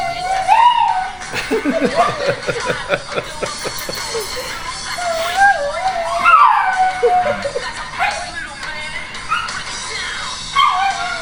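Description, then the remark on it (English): A dog barks and yips in bursts with high whining whimpers in between, while people chuckle and talk in the background. “That was my dog, you idiot.”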